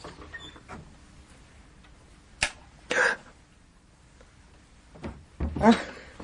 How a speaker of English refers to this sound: And then I heard the door of my room opening, very softly.